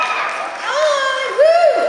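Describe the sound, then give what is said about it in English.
An audience, many dressed in cosplay as Peggy, screams and cheers in a loud, sustained roar, with high-pitched shrieks rising and falling in pitch above the dense wash of voices. “I think at some point you should probably ask all the Peggies in the audience to scream, because there are a lot of cosplayers of you.”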